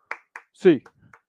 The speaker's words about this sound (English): Get your hands up, Bruins fans. 8 clap time, baby. And 1, 2, 3, 4, 5, 6, 7, 8.